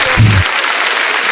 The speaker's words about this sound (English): You showed up for 420, and you deserve a round of applause.